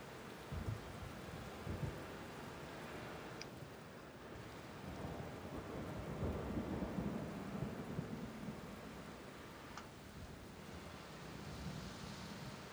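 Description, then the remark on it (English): Steady rain pours down continuously with a dense, hissing texture outside a building with garage doors, while low thunder rumbles in the background throughout. No voices are heard. “Not get rained on anymore? Might as well step in.”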